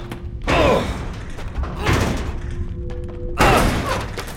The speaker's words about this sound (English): We're gonna try to break the door down. Get back.